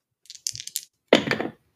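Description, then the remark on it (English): A few quick, light clicks and clacks, then a louder rattling clatter lasting about half a second as two six-sided GURPS dice tumble across a hard surface, landing on snake eyes. No one speaks. “Roll 2 six-sided dice and add 1 to the total.”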